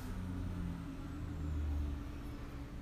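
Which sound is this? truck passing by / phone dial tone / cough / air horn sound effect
truck passing by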